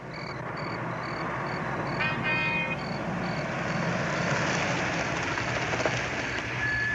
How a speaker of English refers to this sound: You drop down quickly as a car pulls up near the Benson's house.